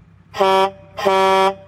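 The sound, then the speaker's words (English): Two loud, brassy air horn blasts: a short one, then a longer held one after a brief gap, each a rich steady tone over a faint low rumble, with no talking. “Can't you just let me play with me big horn in peace?”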